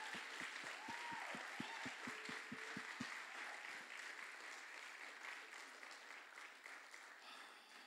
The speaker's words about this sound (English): Come on, can we just give some applause to the people that just said yes to Jesus?